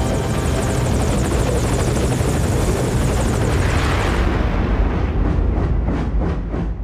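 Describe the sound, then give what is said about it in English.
A loud helicopter, the Pequod, its rotor chopping in a steady rapid thump with a dense roar of engine noise that holds throughout, the blade pulses growing more distinct toward the end, as Quiet guides it to Venom Snake. “Quiet guides the chopper to Venom Snake, but by the time he comes to, Quiet is nowhere to be seen.”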